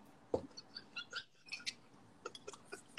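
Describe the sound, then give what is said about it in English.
Quiet sipping from a drink of Bel Air Rosé: a soft thump, then a scatter of small wet slurps, lip smacks and faint squeaky clicks over a few seconds, with no talking. “Might as well take a little sip, man.”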